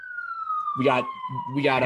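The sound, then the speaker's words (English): A police siren blares in a steady, slowly falling wail that runs throughout, down in Baltimore, while a person talks over it in short bursts. “We got sirens flashing here, blaring down in Baltimore.”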